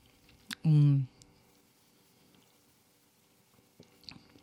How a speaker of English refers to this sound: Some good slurping ASMR for you.